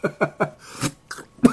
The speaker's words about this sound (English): But, yeah, excuse me. That made me cough there.